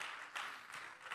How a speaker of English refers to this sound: And if you're thankful that you belong to a church like that, you ought to give God a hand clap right now.